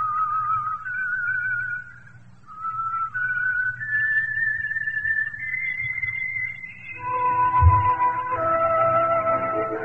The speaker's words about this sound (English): Whistle be your signal for the Signal Oil program, The Whistler, each Wednesday night at the same time